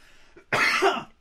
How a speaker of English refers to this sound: I'm going to just cough off mic for a second. Sorry.